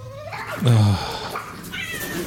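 A loud, drawn-out cat yowl rises and bends in pitch, then trails into softer meowing tones, all set within a busy musical backdrop of a song about kitties.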